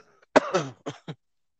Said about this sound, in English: See, you got that slight cough too, huh? I got you. Yeah. Nah, that's because I be smoking that marijuana.